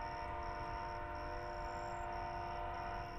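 A train rumbles past with a sustained, blaring horn held steadily throughout, loud, over a dense low mechanical roar with no talking.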